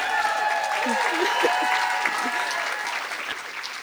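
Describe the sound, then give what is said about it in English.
An audience claps steadily, a dense wash of many hands at a fairly loud, even level for a few seconds, with faint murmuring voices mixed underneath, at a Long Story Short event hosted by 3S Art Space. “Just so you guys know, can you guys give me like a clap or something?”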